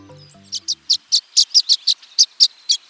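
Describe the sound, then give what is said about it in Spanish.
A violet-green swallow gives a quick series of about a dozen high, thin chirps in a steady rhythm, clear, after a few low tonal notes fade out at the start, as the nesting season ends. “Parece que esta golondrina verdemar sabe que es tiempo de celebrar cuando termina la temporada de anidación.”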